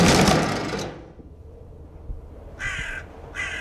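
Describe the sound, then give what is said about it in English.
A crow in a bedroom gives two short, harsh caws in quick succession, following a brief burst of rustling noise and a quiet pause; no one speaks. “Oh, thank goodness, just a crow.”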